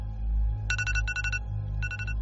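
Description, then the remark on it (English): An electronic alarm rings in quick bursts of bright, warbling beeps, three clusters in a row, fairly loud over a low steady hum, with no one talking. “You set that alarm last night.”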